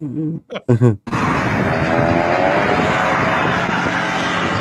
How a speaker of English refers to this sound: Oh Jesus! What? Didn't see that coming, did you? How come I literally couldn't see the plane coming?